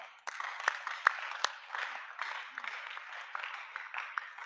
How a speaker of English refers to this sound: The way you are clapping is not corporate clapping.